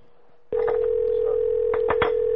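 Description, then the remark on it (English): A phone line picks up with a sudden, steady dial tone that hums on without a break, broken by a few sharp clicks like buttons being pressed. No one speaks. “Let me try to do it myself.”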